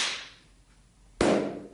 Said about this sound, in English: Two very different styles of clap there. Yeah, the first one, I hit the ends of my fingers together quite hard, which made a really high-pitched clap. The second one, I sort of clapped together two cupped hands, which makes quite a low-pitched clap,